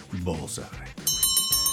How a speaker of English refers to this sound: Ladies and gentlemen, there's the closing bell.